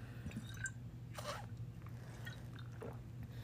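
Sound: sipping a drink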